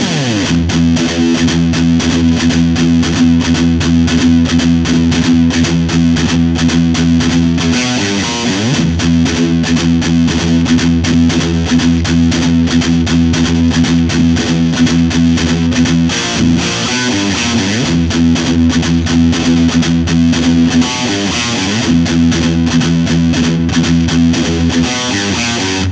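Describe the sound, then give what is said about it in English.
A heavily distorted electric guitar riff plays alone and loud, thick sustained low chords that shift pitch every few seconds, with a steady, saturated buzz throughout. “Can I hear that riff for real?”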